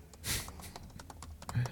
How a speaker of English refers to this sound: I like my super loud fucking keyboard. I know, you have an old school keyboard.